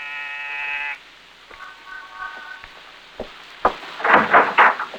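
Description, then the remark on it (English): A buzzer is pressed at an apartment door in an apartment building in the East 70s of New York. It gives a steady, harsh electric drone for about a second, then a fainter second tone, followed by scattered clicks and a burst of louder knocks and rattles. “On the afternoon of your arrival in New York, you walk down the corridor of an apartment building in the East 70s, pause and press a buzzer.”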